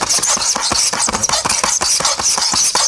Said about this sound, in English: For instance, in this cell, we have the classic sound of nails on a chalkboard.